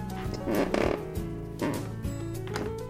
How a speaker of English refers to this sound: These stairs have served several, literally several, Stantropolitans, letting them walk confidently to the second floor and then descend once more, fearing not for the safety of their footing. Groovy! Groovy. Do you hear this creak?